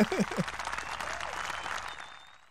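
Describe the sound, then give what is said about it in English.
A burst of canned applause set off by a clap button, dense crowd clapping that stays steady and then gradually fades out over a couple of seconds, with a brief voice at the very start. “I can't reach the clap button's yellow.”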